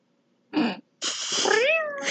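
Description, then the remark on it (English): A person imitates the soft, gravelly meow of Boyd, an old male cat: a short clipped mew, a brief pause, then a longer drawn-out meow whose pitch bends upward near the end. “He goes, meow. Yeah. His cry is very soft. He's like, meow. An old man cry.”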